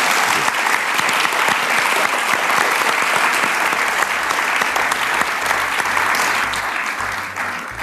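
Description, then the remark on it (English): A live audience at the end of a panel breaks into sustained applause, dense clapping that continues steadily for several seconds before beginning to taper off slightly at the end. “So give us a round of applause.”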